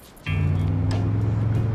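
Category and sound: vehicle, car engine running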